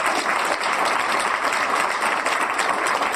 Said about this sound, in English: So I'm going to ask you for one last rousing set of applause for these three wonderful attorneys.